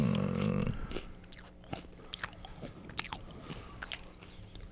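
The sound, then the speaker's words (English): Chewing of crunchy wasabi peas: a steady run of sharp, crisp crunches and mouth clicks at an irregular pace, loud, with no talking. “What we got? Wasabi peas.”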